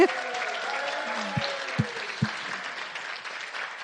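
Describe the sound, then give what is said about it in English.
A church audience bursts into sustained applause for members who have just shared, with dense clapping throughout and a few voices whooping and cheering at the start, steady and fairly loud for the whole stretch. “Now a big cheer. Come on, people.”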